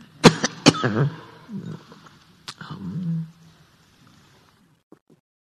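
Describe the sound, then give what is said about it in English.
A person coughs: two sharp, rasping coughs in quick succession, then a pause and another harsher cough with a gravelly tail, followed by quiet. “Anybody got a cough drop?”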